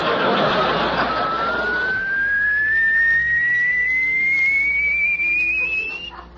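A car lift raising a car on the rack after a black button is pressed: a loud mechanical whine climbs steadily in pitch for several seconds over a rushing motor hum, then cuts off.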